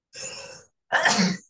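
Two quick sneezes in a row from a person who gets sneezy in the heat, fairly loud, the second sharper and stronger than the first, with a short pause between them and no talking.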